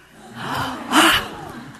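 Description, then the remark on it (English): A single sharp, astonished gasp, a quick breathy intake of air rising out of soft breathing and fading away within a second, with no talking around it. “I want you to just, gasp.”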